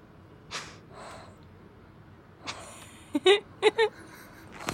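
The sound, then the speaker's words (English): A pet named Noodle breathes heavily through its mouth: a few soft, airy huffs, then a quick cluster of louder, snorting breaths near the end, with no talking. “A lot of very calculated breathing.”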